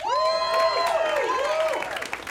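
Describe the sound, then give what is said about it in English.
An audience claps steadily throughout in answer to being asked who listens to music at work, with loud whoops and cheers rising and falling over the applause, a lively burst from a sizable crowd. “How many of you that applauded to that are surgeons?”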